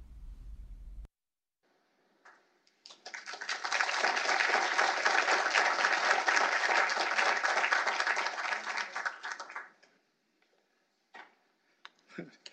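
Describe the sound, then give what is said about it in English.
An audience at a Heritage Foundation program breaks into steady applause welcoming Executive Vice President Kim Holmes. The applause swells quickly, holds for about seven seconds, then tapers off, leaving a few scattered claps and small noises in the quiet that follows. “You know you're in trouble when you have to ask people to applaud.”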